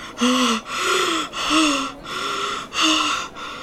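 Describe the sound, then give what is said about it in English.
An older man sitting on the floor breathes in heavy, laboured gasps, loud, about five in a steady rhythm, each with a raspy, slightly wheezing tone and short pauses between them; no talking. “And an older gentleman sits on the floor, his breathing particularly laboured.”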